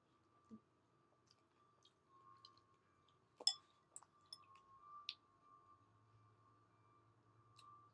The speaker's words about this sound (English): The long pauses that y'all are hearing is me chewing.